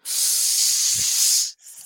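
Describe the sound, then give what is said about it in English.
A person hisses like a snake, a steady breathy hiss lasting about a second and a half, fairly loud, then a brief softer hiss after a short pause. “All right, his hiss. I'm a snake.”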